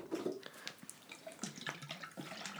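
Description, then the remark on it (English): A cocktail pours steadily from a quart jar into a glass, a trickling splash with small gurgles and clinks, continuing for a few seconds with no talking. “How about I pour you one first?”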